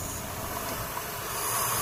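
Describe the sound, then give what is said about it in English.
Five baby owls hiss inside a nesting box atop a pole in fields, recorded with a microphone placed inside the box, to scare off predators: a harsh, breathy rasp like a vacuum cleaner that runs continuously without pause and swells slightly louder toward the end. “Inside, five baby owls are making this extraordinary hissing sound, almost like a vacuum cleaner, to scare off predators.”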